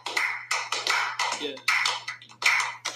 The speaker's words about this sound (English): Oh, is that the slow clap? Yeah. Oh, yeah. I keep thinking that's like pool balls. Someone's playing pool.